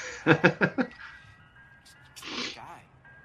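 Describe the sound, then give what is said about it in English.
A thin, tinkly ice cream truck tune plays faintly in the background while voices speak over it in short, loud bursts. “The whole background of this scene is against the ice cream truck music.”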